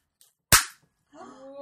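An inflated balloon pops with one sharp, loud bang that fades quickly, followed after a short silence by a person starting to speak.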